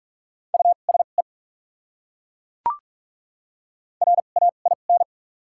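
Rapid Morse code tones sending common English words at 45 words per minute with doubled character spacing, in a steady mid-pitched beep, sounding two quick bursts of dots and dashes separated by a silent pause broken once by a sharp click.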